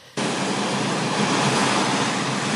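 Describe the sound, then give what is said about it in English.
A steady, loud wash of ocean surf that sounds almost like TV static, starting abruptly and holding a dense hiss without any noticeable swells or pauses. “So I can tell that it's the ocean, but it also sort of sounds like TV static or like snow.”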